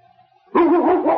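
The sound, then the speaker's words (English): After a brief near-silent lead-in, a dog inside a Mountie's cabin lets out a loud bark that stretches into a rough, drawn-out yowl lasting over half a second. “Barking.”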